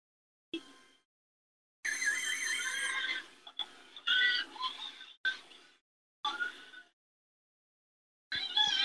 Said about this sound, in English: Squealing and oinking.